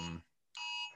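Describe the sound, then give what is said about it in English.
A phone's public safety alert tone blares during a live video in two loud, harsh, buzzy bursts separated by a brief silent gap, piercing with no voices. “that was a public safety alert that they came up on the phone.”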